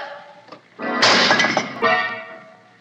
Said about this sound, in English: Look out, Patsy! He's knocking over that statue! It's falling over!